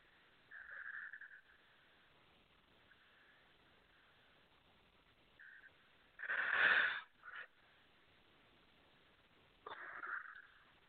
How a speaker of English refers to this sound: Sorry, I had to take a yawn there.